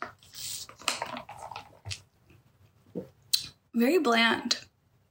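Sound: sipping iced coffee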